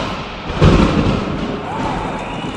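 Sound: thunder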